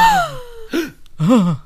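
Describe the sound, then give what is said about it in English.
Exaggerated, theatrical gasps from a couple of voices: a sharp high cry sliding downward, then two more voiced gasping exclamations in quick succession, loud. “Everyone gasped.”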